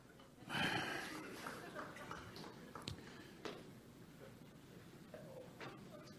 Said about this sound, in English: Okay, I got blow my nose.